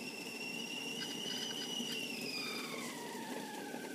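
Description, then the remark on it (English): A boiling tea kettle whistles steadily in a high, piercing tone over a hissing, rushing background, the pitch wavering and then sliding gradually downward toward the end. No one speaks. “And the next sound is an awesome sound from a friend of mine named John Brown, who sent the sound of a tea kettle boiling.”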